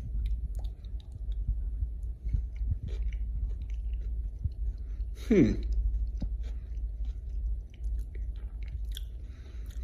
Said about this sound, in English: The celery is still crunchy, but now I think it's both actually.